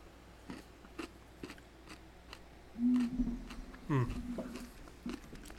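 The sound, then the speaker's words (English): Chewing of pickled mushrooms, with soft, wet crunches repeating at an irregular pace and a brief hummed murmur from a person partway through. “I'm glad that you guys get to listen to us chew.”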